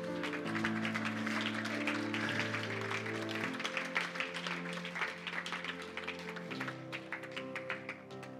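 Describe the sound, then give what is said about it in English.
An audience claps steadily for several seconds for people coming forward to be led through a prayer, a dense crackle of many hands that stays loud throughout, with sustained keyboard chords humming underneath. “Hey, let's give them a clap, hey?”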